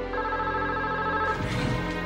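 A telephone rings with a steady electronic tone, sustained throughout, fairly loud with no one speaking: a phone call from Elkins' wife interrupting a police interview.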